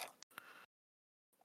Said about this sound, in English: I will make my roll using my red market's die and extra dice.